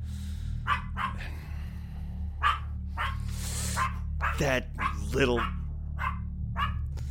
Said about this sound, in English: All right. That does it! Shut up, dog! Shut up! Shut the hell up!